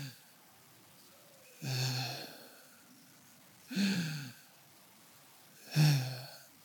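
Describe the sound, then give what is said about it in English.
A person imitates the labored, gasping agonal breathing of a dying patient: three harsh, throaty inhalations spaced about two seconds apart, each loud and abrupt with near-silence between them, without speech. “And by the time he was brought in, he was actually lying there doing what we call chain stoke respiration, which is this agonal gasping of”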